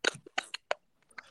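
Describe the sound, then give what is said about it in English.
A cricket clicking away, with about half a dozen sharp, dry clicks in an irregular pattern and quiet gaps between them. No one speaks. “I feel like we've got a cricket in the background somewhere that's clicking away, and I can't figure out where it's coming from.”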